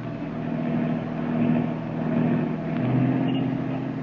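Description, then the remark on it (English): A steady car engine drones, its low hum swelling and easing gently over a few seconds with a dense, rumbling background of heavy surrounding traffic, as the car follows a cab. “Traffic sure is heavy today.”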